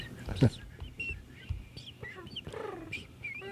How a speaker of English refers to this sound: I like that bird. If he says it, you bring that bird out. That was too loud. Quieter birds. No angry birds.